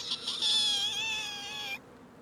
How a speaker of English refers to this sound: All right. And then Troy's going to step first onto the bridge. Creak.